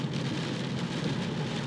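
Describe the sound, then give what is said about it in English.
Heavy rain pours down in Cork in a steady, dense hiss with scattered drops pattering on a surface, loud, with no voices. “Yeah, there's nothing but rain. Pouring down on top of us.”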